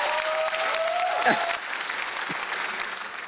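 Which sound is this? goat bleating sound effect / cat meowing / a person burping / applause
applause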